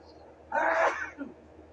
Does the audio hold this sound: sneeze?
yes